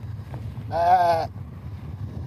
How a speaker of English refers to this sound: Got all the sheep around us here. Yeah, it'd make a disappointing lack of noise.